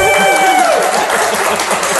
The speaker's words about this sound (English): And thanks to all of you out in the audience for humoring us with your applause. We could use some more humoring, though. Right?